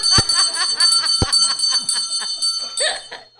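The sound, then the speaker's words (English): A hand bell, rung by a priest, rings loudly, its clapper clanging rapidly in two vigorous shakes, with a bright metallic ring sustaining throughout. “He's going to ring it twice. This is the way the nuns used to call us for class.”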